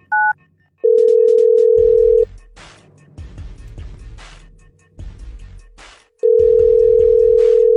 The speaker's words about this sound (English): And we are dialing the phone.